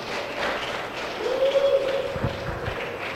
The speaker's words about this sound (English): I think we want to clap for our film stars again.